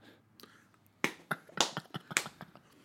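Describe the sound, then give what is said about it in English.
A quick flurry of sharp, smacking slaps, like a hand slapping a knee: about seven crisp hits in an uneven rhythm, preceded by a couple of faint taps, with no talking. “It's a knee slapper.”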